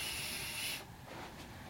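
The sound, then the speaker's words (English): A person imitates a vape hit with one sharp, breathy inhale, a bright steady hiss lasting under a second before dropping away to a faint, rough background noise. No speech. “I was just breathing in to make vape sound.”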